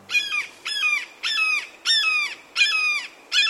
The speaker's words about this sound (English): That sharp, insistent cry is the call of a red-shouldered hawk. This rather secretive raptor can be hard to spot, perching in a stand of trees along a riverside.